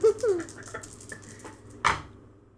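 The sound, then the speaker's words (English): Dice are rolled twice in a tabletop game, rattling and clattering in a scatter of light, quick clicks and ending with a sharper knock near the end. A voice is briefly heard at the start. “Okay, and then I just roll these dice twice again. Yep, roll those dice up twice.”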